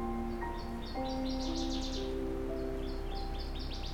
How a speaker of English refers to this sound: Nevertheless, I'm finding species such as this northern water thrush, who likely arrived a week or two ago to much warmer weather, singing in spite of the chilly air.